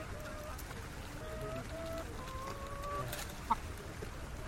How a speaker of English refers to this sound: Chickens in cages.